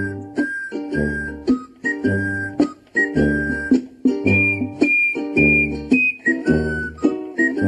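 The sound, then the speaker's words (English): A bright tin whistle plays a lilting tune over a bouncy, rhythmic backing with steady low pulses, loud, with no voices. “Oh, come on, the tin whistle version.”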